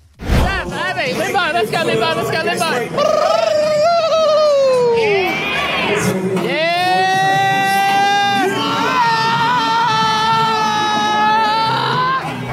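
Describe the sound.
A crowd erupts in loud, overlapping screams and shrieks, high-pitched voices rising and falling in long sustained cries after a brief burst of excited chatter.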